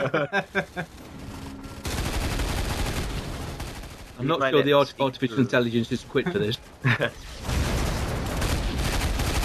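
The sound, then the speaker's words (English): Loud, dense bursts of video game gunfire and explosions build into a continuous roar that fills two stretches, with a man's voice speaking at the start and again in the lull between barrages. “One of the background explosions blew a dustbin about 100 foot into the air.”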